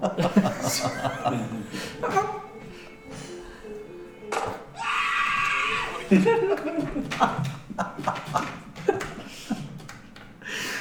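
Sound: man screaming in fright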